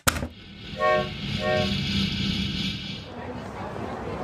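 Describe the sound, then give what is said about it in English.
A train to Pleasant View rumbles along steadily while two short blasts of its horn sound, a tonal honk followed by a second, with the low rolling noise continuing throughout. “I think I'll take the train to Pleasant View and do some investigating at this Little Wicker headquarters of yours.”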